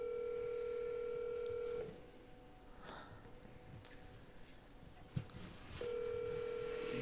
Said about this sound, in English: How's it taking you this long to call him? Well, I'm technologically inept. Put it on speakerphone. And it's on speaker, and now I'm cranking it up.